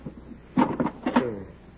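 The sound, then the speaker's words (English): A kit is opened to take out chalk, with two short clusters of clattering and rattling handling noise about half a second apart, over a quiet background. “Wait till I get some chalk out of this kit.”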